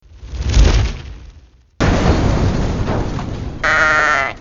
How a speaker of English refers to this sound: Now we need the explosion sound.